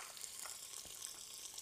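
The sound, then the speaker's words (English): Diced bacon, cut small, starting to sizzle as it fries in a pan to render its fat, a steady, dense crackle and hiss with small pops scattered throughout, continuous, with no one talking. “I'll start with the bacon here. Get in there, starting to sizzle already.”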